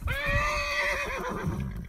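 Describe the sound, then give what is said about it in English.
A horse, a mare named Pistol, whinnies loudly, a long shrill neigh that holds steady then wavers and breaks into shaky pulses before fading, with low rumbling noise underneath. “All right, this is me failing and getting off my damn horse because she won't cross a fucking creek.”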